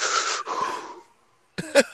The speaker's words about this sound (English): Yo, your Lamaze breathing would be good on a track, for real. That would sound fire on some beat.